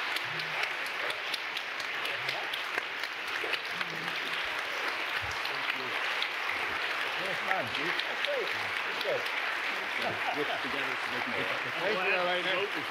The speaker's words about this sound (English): Let's give a big round of applause to the justices.